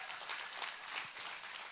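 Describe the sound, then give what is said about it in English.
A crowd applauds steadily, a dense wash of many hands clapping at once with no pauses or voices, holding an even loudness throughout, welcoming to the team the 450 people who have gone through the growth track. “Can we clap our hands and welcome all of them to the team?”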